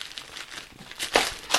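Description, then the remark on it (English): Paper crinkling and crumpling as a poster is unwrapped, a steady run of dry crackles that swells into a few louder, sharper crunches toward the end, with no voices. “Okay, if this is a poster, you ruined it, asshole.”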